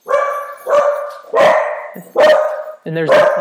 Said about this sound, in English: And there's the dogs agreeing with me. I'd like to think at least.